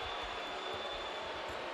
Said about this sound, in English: Crowd boos. They wanted a free sandwich.